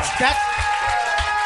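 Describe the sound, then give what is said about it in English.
Steady audience applause as a vote on whether they like a hat, a dense wash of clapping with a few low thumps underneath, holding at an even, moderate level throughout. “By applause, who likes the hat?”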